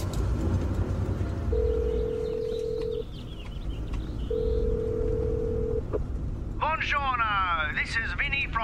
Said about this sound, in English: Look, I'm in the car, mate.